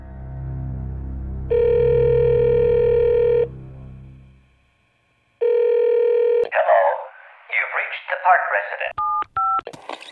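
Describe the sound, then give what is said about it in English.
A phone line hums with a steady tone that breaks off and returns, then a burst of muffled, garbled voice and a few short keypad beeps as someone dials in to check voice messages, all fairly loud. “Hey, may I use your phone? Sure. I got this really strange call from my sister today. I want to check our messages and see if there's anything new.”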